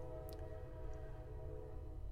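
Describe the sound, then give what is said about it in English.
A train rumbles steadily, a low continuous drone with faint sustained horn-like tones over it and no talking. “Train ASMR too.”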